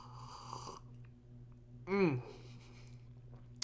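A single quick, loud slurping sip of hot chocolate with a rising, whistly edge, standing out against a low steady hum, with no one talking.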